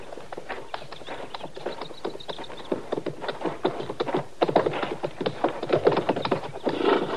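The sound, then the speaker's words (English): Hooves clip-clop steadily on hard ground as several horses are brought out, a brisk, uneven patter of hoofbeats growing slightly louder toward the end, with no voices. “All right, Chester, you can bring the horses out now.”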